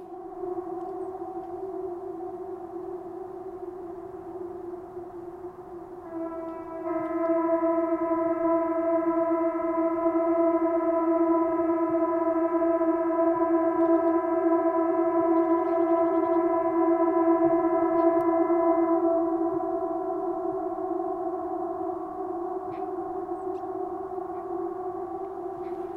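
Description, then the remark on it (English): A steady, unbroken emergency alarm tone from a state alarm test sounds loud for the whole stretch, gaining a harsher, buzzier layer partway through before easing back to a plainer drone. No voices. “but also this morning there was an alarm that went off, like a state alarm, and there was sirens, and I got an emergency thing on my phone, which I'll play for you now.”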